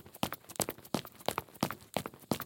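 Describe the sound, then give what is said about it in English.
Hurried footsteps on dirt and stone, a quick steady run of about seven crisp steps with no voices. “Hurried footsteps on dirt. Clank of a handle of an iron door. The door opens. Footsteps resume on stone.”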